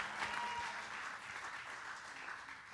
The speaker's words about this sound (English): Come on, if you're going to clap for the Lord, then give him a praise then. And if you can't clap about it, then say ouch about it, but do something.